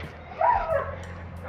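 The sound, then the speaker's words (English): A small pug gives a quick pair of high, yappy barks over a steady low outdoor rumble as someone walks past it, with no one talking. “Could you just not bark?”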